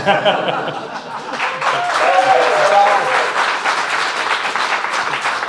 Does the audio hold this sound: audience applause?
yes